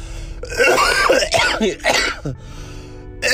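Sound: cough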